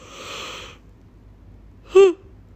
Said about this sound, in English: Whoever wrote the Bible literally yawn. I just yawned because of it.